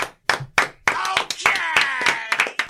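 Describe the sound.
A handful of sharp, irregular hand claps ring out in a quick, loose burst while voices whoop and call out over them.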